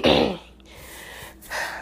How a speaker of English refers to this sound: see, look, I coughed one time and now I'm just, there we go, all over the place.